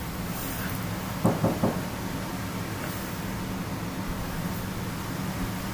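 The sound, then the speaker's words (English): A quick cluster of three or so knocks, fairly soft and close together, rising briefly above a constant background hiss. No voices are heard. “You just hear a knock.”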